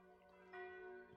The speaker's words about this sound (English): The distant church bells are still ringing.